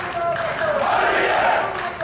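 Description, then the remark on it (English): A large crowd of Syrian protesters, whole families calling for the end of Assad's regime, shouts together in a loud, sustained roar of massed voices, rising and falling slightly as they chant "freedom" in unison. “They're all shouting, freedom, freedom.”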